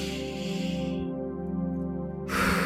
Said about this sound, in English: I just got to take a moment to breathe. Y'all give me a minute. Come on, those that will. Come on, inhale and exhale.